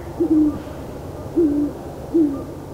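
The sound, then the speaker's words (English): Great horned owls, a female and a male, hoot back and forth among aspens and oaks on a moonless night: three low, smooth hoots spaced about a second apart, clear over a quiet background with no talking. “But now among aspens and oaks in this quiet and secluded place and with the safety of a moonless sky, this time the female replies, and the owls talk back and forth, her voice thin, his low and smooth as butterscotch and rum.”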